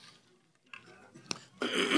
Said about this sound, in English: I'm just going to try to clear my throat.